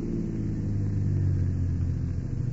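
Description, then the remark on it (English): A car engine rumbles steadily at low pitch, its hum easing slightly as the car slows down, with no voices over the constant drone. “What are you slowing down for?”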